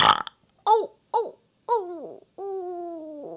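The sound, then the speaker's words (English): Four loud belches in a row, each a croaky voiced burp; the first two are short, the third longer, and the last a drawn-out, sustained croak. “Now it's time for me to burp.”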